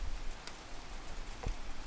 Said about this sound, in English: But as Oakville resident Beverly Roberts lay awake in her bed, listening to the pitter-patter of the rain, she noted that it somehow sounded denser than usual.